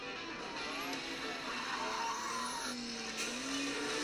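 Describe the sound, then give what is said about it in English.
Racing cars in a video game roar steadily and loudly as tires skid and squeal, with a couple of brief, sharp impact sounds near the end as a wreck happens and the cars pile up. “Oh, and there's a wreck. The cars are piling up.”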